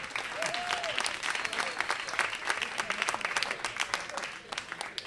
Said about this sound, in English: So I'm about to introduce the moderator for the event, so please give a warm round of applause to Scott Bowles from USA Today.